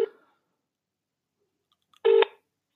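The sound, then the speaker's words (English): A telephone ringback tone on an outgoing call: a brief buzzy purr fades at the start, then after a pause of silence another short, steady ring burst sounds, with no one speaking. “Still ringing. Come on.”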